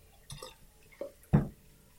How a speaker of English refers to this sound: Just grabbing the other one out of the fridge just to see how he goes.